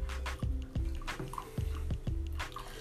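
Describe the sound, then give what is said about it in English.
Water at the same temperature as before is poured over tea leaves for another steeping, in a series of short glugging splashes, about six uneven bursts with low bubbly tones, moderately loud and with no talking. “And just add some of this water, same temperature, same time as the last one.”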